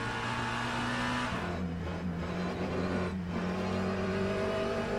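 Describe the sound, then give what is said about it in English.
A GT race car engine drones steadily in on-board footage from the sim Le Mans Ultimate at night. Its pitch dips briefly as it lifts off and then climbs again under acceleration, with a constant loud whine and no voices. “So, riding on board with one of the GT cars here.”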